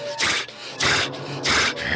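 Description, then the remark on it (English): An animal biting a person's leg huffs and breathes heavily, three loud, harsh exhalations in steady rhythm about two-thirds of a second apart, with a low rumble between breaths. “And so I reached down and you can kind of hear him like huffing, like breathing and like that.”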